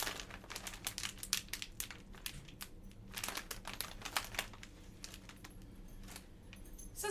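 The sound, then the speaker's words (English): A sealed coconut snack pouch from Thailand crinkles and crackles as it's handled, with a steady stream of sharp plastic rustles for several seconds and no talking. “Apparently these are sealed. They have to be.”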